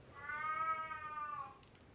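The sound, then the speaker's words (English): A cat lets out one long, drawn-out meow lasting over a second, clear, with a slightly rising and falling pitch. No one speaks during it. “But, excuse me for the cat interruption.”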